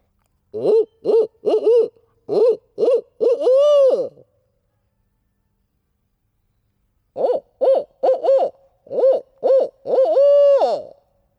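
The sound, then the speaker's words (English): A person mimics a barred owl, giving two loud bursts of rhythmic hoots, each ending in a long, drawn-out wavering call, with a few seconds of silence between them. “Maybe you could tell that that was not a real barred owl.”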